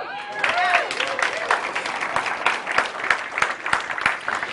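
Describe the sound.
A church audience applauds the kids steadily for several seconds, a dense wash of overlapping claps with sharper individual hits, and a few cheering voices rise briefly at the start.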